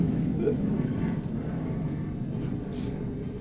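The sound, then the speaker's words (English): A jet aircraft roars overhead in a steady, low, rumbling drone that holds at an even loudness for a few seconds, with no clear speech over it. “I saw a car the other day that had a bumper sticker that was like, I hurt jet noise because I support our troops or something like that.”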